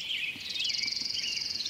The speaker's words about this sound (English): Catch the rhythmic notes of a warbling vireo, interspersed with lilting phrases of a black-headed grosbeak.